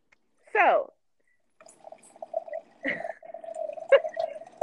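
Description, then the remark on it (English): Wine glugs and streams steadily from a boxed-wine spout into a glass for several seconds, fairly quiet, after a brief squeaky sound at the start. “So, I'm pouring it out of a box. We all can hear you. It's a box, not even a bottle.”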